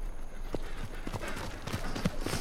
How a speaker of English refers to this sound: I felt a horse ride up beside me, and with a phantom tug on my head, Dangler's Branch was unveiled to me, and a noose slid down around my neck.